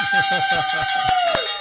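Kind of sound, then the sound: signal or alarm, bell being rung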